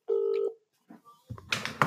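A steady electronic phone tone sounds for about half a second, followed by faint brief beeps and then a burst of louder, noisy clatter as a call, placed from a phone set to private caller ID, connects.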